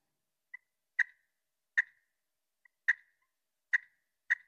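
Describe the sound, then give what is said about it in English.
Five sharp, isolated turkey clucks made with a hand-operated turkey call, spaced roughly a second apart, each a crisp percussive pop with short trailing tail, some preceded by a faint softer click; no talking, otherwise silent. “There are clucks.”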